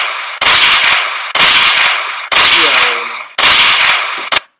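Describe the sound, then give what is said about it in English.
Five loud gunshot sound effects fire about a second apart, each a sharp blast with a ringing tail; the last shot is clipped short. No one speaks. “I'll give him five gunshots for that.”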